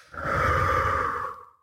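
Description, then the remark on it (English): A long, deep exhale during a belly-breathing exercise, after the breath is held, steady and breathy, rising quickly and holding for over a second before trailing off, with no talking. “Let's inhale into the belly with our shoulders down, expanding the belly, fill that belly up all with air, relaxing air, hold it for a moment for as long as you can, and exhale.”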